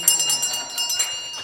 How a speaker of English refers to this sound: Oh, the bell has sounded.